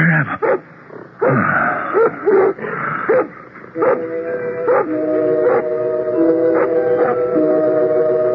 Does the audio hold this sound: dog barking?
yes